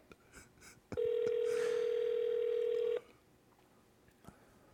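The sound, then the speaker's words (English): A single loud ringback tone on an outgoing phone call, a steady electronic buzz lasting about two seconds, with faint background noise before and after and no one talking. “If it goes to voicemail, we have to leave a voicemail saying that he needs to respond to that.”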